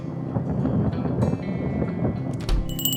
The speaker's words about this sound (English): Sounds like it's going to be a big one. Just a little thunderstorm. We get them all the time.